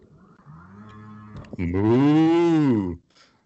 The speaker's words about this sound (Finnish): Tuo kuulostaa mut ihan lehmän ammumiselta, suoraan sanottuna.